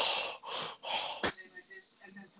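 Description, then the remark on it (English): Three loud, rough breaths rasp into the microphone in a steady rhythm, a voice mimicking heavy breathing, followed by a sharp click and a brief stretch of quiet voice. “I gotta hear someone breathing in the mic.”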